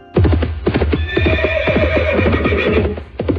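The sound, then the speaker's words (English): Horse hooves clip-clop in a steady, brisk rhythm while a horse whinnies over them, loud, filling the whole few seconds with no voices; it is a horse sound effect. “I thought you were going to hit the horse sound effect.”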